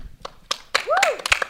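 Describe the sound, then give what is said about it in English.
Scattered real, not canned, applause from a small audience: a handful of sharp, uneven hand claps, loud and crisp, with a rising-then-falling vocal whoop sounding through the middle. “And this is a real applause. It's not a fake one.”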